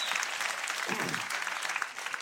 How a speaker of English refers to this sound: And I would suggest, if you're going to clap for God, come on, give him a good hand clap. Save the golf claps for the golf course.